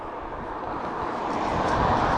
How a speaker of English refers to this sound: Just wait for the one car to pass in the last 15 minutes. I am in Iceland. I am in Keflavik, which is a small town just near the airport.